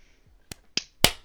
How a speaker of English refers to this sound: Do you need me to, like, clap or anything? Can be like, you start now. 3, 2, 1.